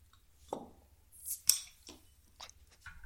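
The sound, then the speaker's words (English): Drink cans being cracked open, with a few sharp metallic pops and short bursts of fizzing hiss, spread over a few seconds with no one talking. “Let's crack these open, boys.”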